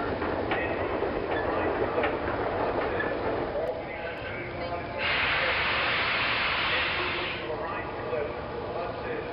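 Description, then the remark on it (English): Steam engines puff, snort and rumble at a busy railway yard to one side of a town, with a loud burst of hissing steam midway and banging and clanking from trucks being shunted, a continuous, fairly loud din. “As he walked along, considering, his attention was caught by some red and green lights a little way off to one side of the town, and the sound of the puffing and snorting of engines and the banging of shunted trucks fell on his ear.”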